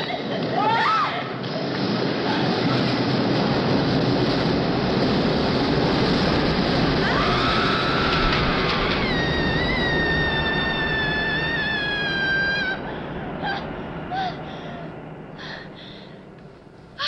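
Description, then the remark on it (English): A train roars past in a film scene, a loud, steady rushing rumble filling the whole stretch, with a high wavering wail rising above it midway as a woman screams while the train goes by, before the roar eases slightly near the end. “One of the strangest scenes in the movie is when Sally appears to have an orgasm while she's screaming after a train goes by.”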